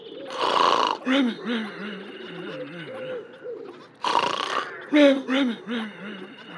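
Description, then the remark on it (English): Loud, cartoonish snoring heard over a phone: two rasping, roar-like snore bursts, each trailing into a wavering, growly exhale, with a voice imitating the snores rather than a real sleeper. “A loud snore is keeping everyone at the farm awake.”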